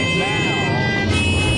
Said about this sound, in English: We got horns honking from angry Jews.